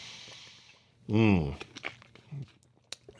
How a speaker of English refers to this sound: Man, my voice is just a little bit dry today. You don't mind if I take a sip of water on the air, do you? Of course not. Okay.